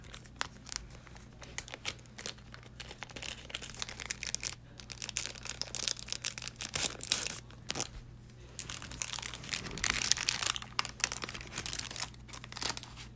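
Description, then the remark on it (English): Close-up crinkling and brittle crackling as a piece of cannabis shatter is broken off, with irregular snaps and papery rustles continuing steadily for several seconds, no talking. “Alright, let's get a piece of this shatter.”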